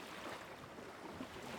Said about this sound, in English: We're on a little spit of land, gravelly beach, and a little blustery, windy, dewy, wet.